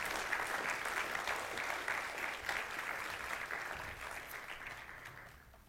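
A church audience applauds a team as they come up to join the speaker, a dense wash of many hands clapping steadily that holds for several seconds before gradually thinning and fading toward the end.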